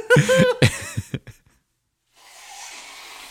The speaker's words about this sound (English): He's blowing his nose, but listen.